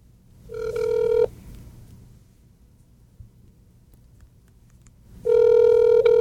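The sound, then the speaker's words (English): A telephone ringback tone sounds twice as a call is patched through from a phone, each ring a steady electronic buzz lasting under a second, separated by about four seconds of quiet line hiss. No one speaks. “I can always just patch him through to the from the phone here.”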